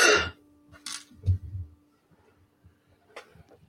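Several short, rough coughs coming in uneven bursts with quiet pauses between them and no talking.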